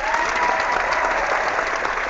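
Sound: round of applause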